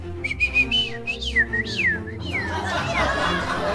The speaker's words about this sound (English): The birds sing.